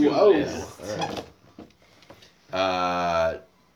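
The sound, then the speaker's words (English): A laptop gives a buzzy, drawn-out creak lasting under a second, like a bed creaking, fairly loud, after a few soft ticks and clicks. Brief voice sounds come just before it. “I like that your laptop made a weird sound that's going to pick up there and it's going to think that.”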